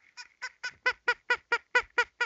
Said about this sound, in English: I've got a little squeaky toy thing.